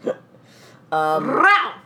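A woman lets out a loud, guttural growl lasting about a second, rough and throaty, swelling and bending upward before trailing off, an imitation of an animal's snarl after a short faint vocal sound.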